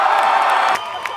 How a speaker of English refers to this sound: I just want to say thank you. Round of applause to you.